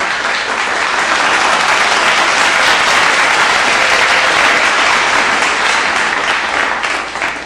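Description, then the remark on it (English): A crowd applauds a special guest, steadily for several seconds, a dense, loud wash of many hands clapping at once with no clear rhythm, tapering off slightly at the very end. “Let's clap.”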